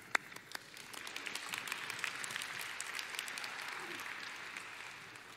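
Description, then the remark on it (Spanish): An audience breaks into steady applause for Kefir, who is about to help with the piano: a dense wash of many hands clapping together at an even level for several seconds, then tapering slightly at the end, with no one talking over it. “Eso, un aplauso a Kefir.”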